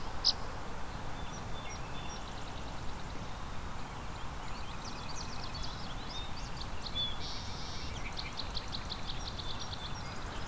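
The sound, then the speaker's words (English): Song sparrows and American goldfinches sing in overlapping high trills, buzzy phrases and twittering notes, fairly faint above a steady broad wash of background noise. “Lots of song sparrows here too. And American goldfinch are singing as well.”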